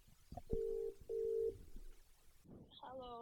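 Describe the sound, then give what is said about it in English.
Two steady electronic phone tones sound in succession as a phone call is placed, each lasting under half a second, fairly loud, before a voice begins speaking over the speakerphone line. “So, we're just going to take a little break in our usual transmission here to make a quick phone call.”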